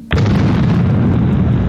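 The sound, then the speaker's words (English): A sci-fi cosmic cannon fires with a sudden sharp crack that swells into a loud, booming blast, its heavy rumble roaring on steadily afterward with no voices present. “Is that a cosmic cannon?”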